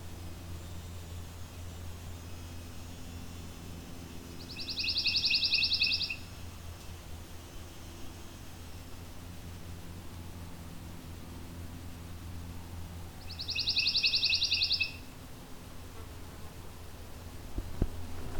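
A pine warbler perched right above the listener sings two short, rapid musical trills several seconds apart, fairly clear over a steady low outdoor rumble and hiss.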